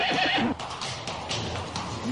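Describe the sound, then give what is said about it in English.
A horse gives a loud whinny at the start, its wavering call breaking off after half a second, followed by a noisy outdoor stretch with a brief rise near the end. “So I think we should go there and just, they were like on their horses.”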